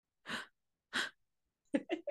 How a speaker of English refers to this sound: The tiny little like bunny gasp that you made when you turned it on. I'm gonna replay it. Can we replay that right here?